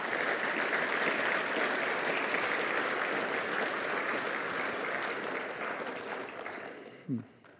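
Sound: audience applauding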